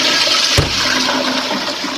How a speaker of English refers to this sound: Next time you think you need giddy, stick your head in the toilet, flush it, and let the water spin around your head and knock you out of your giddiness, for heaven's sakes.